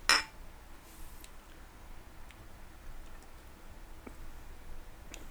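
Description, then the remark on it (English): One bright clink of glasses of IPA beer touching in a quick toast right at the start, ringing briefly before fading into quiet background with a few faint small ticks and taps. No one speaks. “But, yeah, let's give it a little quick cheers and get into it.”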